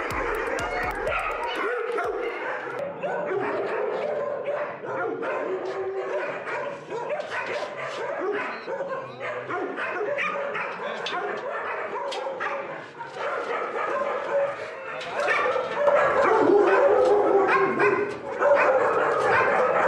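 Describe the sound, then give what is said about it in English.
Dogs bark and yip almost nonstop, loud, with sharp overlapping yelps and some whimpering, as if several animals are calling at once, at an animal shelter in Cairo. “There are only a few animal shelters in Cairo, so this dog was one of the lucky ones.”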